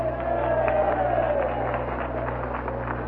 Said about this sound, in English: And before we do anything else, let's give those poor guys one round of sympathetic applause.